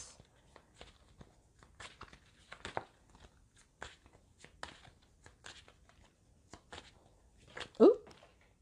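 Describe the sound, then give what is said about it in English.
Tarot cards being shuffled: a quiet, irregular series of crisp flicks and soft slaps, each short and dry, with a brief voiced murmur near the end. “So either like I'm doing really well today with the shuffling, not that, you know, when multiple cards comes out that that's a problem, but it's, hey, set an intention, asking you shall receive.”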